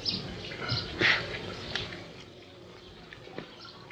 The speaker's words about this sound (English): Don't you think that plant's had enough water, Doctor?